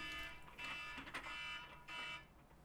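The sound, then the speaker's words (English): An alarm going off with a shrill, buzzing electronic tone that holds in long blasts with brief breaks, then cuts off near the end. No voices. “Pardon me, alarm just went off.”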